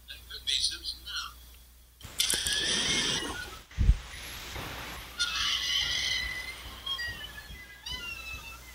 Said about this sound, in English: You gotta love the 50s, monsters that roar that shouldn't.